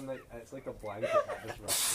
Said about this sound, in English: Bless you.